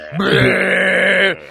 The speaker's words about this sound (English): If you're a grown person, don't go around belching. I'm a big old belcher, man.